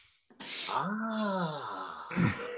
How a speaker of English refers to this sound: And there's the sniff.